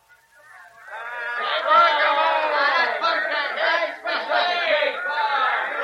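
A large stadium crowd at a ball game roars and shouts continuously, swelling up from quiet into a loud, dense wall of many voices that stays steady, with a brief dip before surging again.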